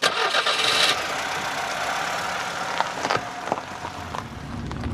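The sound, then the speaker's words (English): A car engine cranks and catches with a loud, rough burst, then settles into a steady idle, with a few clunks and rattles over the running motor. “he converted his car into a sort of mobile aquarium for transporting his fish around the country.”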